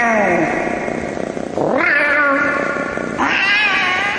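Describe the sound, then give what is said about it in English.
A cat caterwauls loudly, letting out three long, wavering yowls in quick succession, each rising sharply in pitch before sliding back down, with no one talking. “Watch out for that radioactive cat.”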